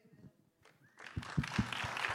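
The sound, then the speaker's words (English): Audience clapping breaks out after a quiet second, a dense wash of many hands with a few sharper individual claps standing out, building and continuing steadily to the end. “You keep getting claps.”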